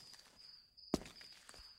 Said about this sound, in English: This time it was approaching footsteps. What the hell? The footsteps got louder. Someone was walking towards us.